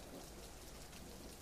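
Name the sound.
rain falling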